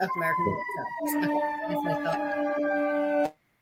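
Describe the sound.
A fire engine siren blares with steady, layered high-pitched tones over some low rumble and faint voices, holding loud for about three seconds before cutting off abruptly.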